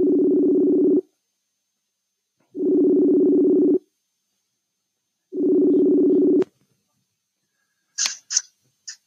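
A phone ringback tone sounds three times, each steady buzzing burst about a second long with pauses between, followed by a few sharp clicks as the line connects.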